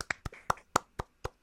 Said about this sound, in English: Good job, buddy. Good job. Yay. You deserve some applause.